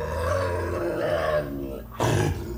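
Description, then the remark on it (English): A low, rumbling animal snarl growls steadily for over a second, then breaks into a short, harsh, louder outburst, with no talking. “she's snarling in front of Six”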